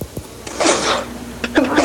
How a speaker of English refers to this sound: That's a sneeze that I did. Did that through a Voice Plus.